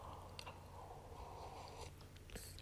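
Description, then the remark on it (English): Someone takes a quick sip of hot coffee, with soft slurping and mouth noises over a low steady hum, and no one speaking. “I'm going to take a quick coffee sip here.”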